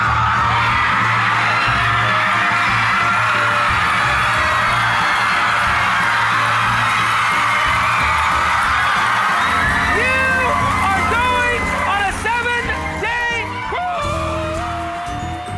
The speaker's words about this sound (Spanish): Por supuesto, al mismo tiempo hacía espectáculo a lo grande, poniéndose a regalar neveras, joyas o coches entre los alaridos del público, que la jaleaba como si estuviera ante una santa en vida.